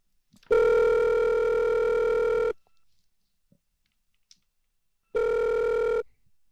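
A telephone rings twice: a long, loud, buzzy ring, a silent pause of about two and a half seconds, then a second ring that is cut off early. No one speaks.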